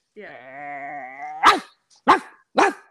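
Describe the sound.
A person imitates a dog: a drawn-out whining tone, then three loud, sharp barks spaced about half a second apart, clear with no other talking.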